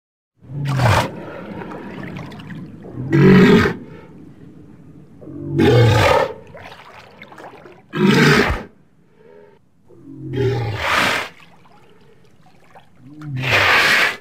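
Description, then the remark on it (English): Six loud, rough roaring bellows from a walrus, unaltered walrus recordings taken from online, each lasting about half a second to a second, spaced a couple of seconds apart, with low rumbling and a faint watery trickle between them. “So what I did was I grabbed some walrus sounds from online, and again, pitched them down and played around with them and added that Moria reverb.”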